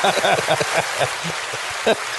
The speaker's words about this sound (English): Hold on. There it is. There's some applause for you.